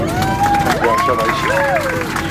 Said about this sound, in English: Nice round of applause, everybody.